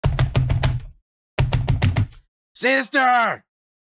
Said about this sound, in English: Ismark kind of stumbles away from you, Broldish, and he stumbles over to the boarded up doorway and begins banging on the door.